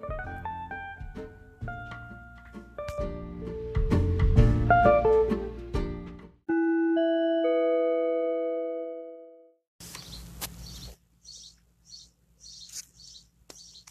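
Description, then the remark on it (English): A loud bird right outside a window calls in a quick series of short, high-pitched chirps, repeating several times in bursts, heard after a stretch of music and a sustained ringing tone. “I hope I am coming loud and clear, because there is a very loud bird right outside of my window.”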